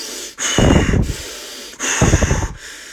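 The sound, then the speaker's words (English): Two forceful, noisy breaths, each a sharp inhale followed by a heavy exhale, with brief pauses between, as someone does breathing techniques to psych up before breaking a pencil. “Wait, I gotta do the breathing techniques.”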